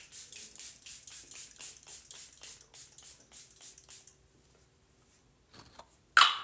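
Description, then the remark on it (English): A rapid series of short, hissing bursts of setting spray misted onto a face, about a dozen in a steady rhythm, fairly soft, then a quiet pause ending in one sharper, louder spritz. “And then with my last setting spray, I just spray it.”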